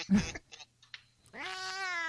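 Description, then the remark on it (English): A cat, Chairman Meow, meows: a short burst of chirpy sounds, then a drawn-out, rising meow holding steady at the end. No one speaks. “All right, yeah, I think Chairman Meow's fed up with this.”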